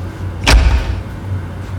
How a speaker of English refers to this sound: They're robbers. They're not in the business of knocking. They're going to kick the door in.